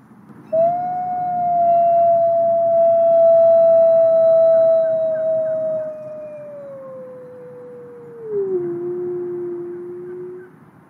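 A long, drawn-out wolf howl holds steady and then slides lower, fairly loud, with a fainter second howl overlapping near the end. No one speaks.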